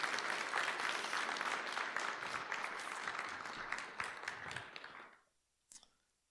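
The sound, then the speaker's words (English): A church audience claps steadily for a woman during a morning service, about five seconds of a dense, even patter of many hands that tapers off quickly, followed by a single faint clap in the quiet. “So, give her a clap.”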